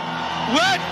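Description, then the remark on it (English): A church audience shouts praise to God together in a loud, dense roar, with one rising whoop cutting through near the middle of the brief burst. “I didn't say just shout. You are shouting the name of God.”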